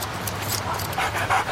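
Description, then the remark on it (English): A dog pants rapidly and steadily in a Super Bowl TV commercial for Doritos, breathy rhythmic huffs over a low background hum, with no talking. “Hey, dog. Anti-bark collar.”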